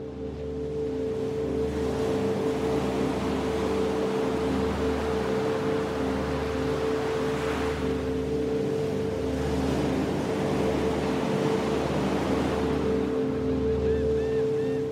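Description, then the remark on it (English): Ocean waves wash in and out in slow, swelling surges under a steady, droning engine hum, as if heard from aboard a boat, with the noise continuous and fairly loud throughout. “As the wave goes in, you take a breath in, and as the wave goes out, you let your breath out.”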